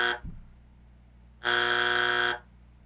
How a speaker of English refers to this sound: Call it a boring buzzer.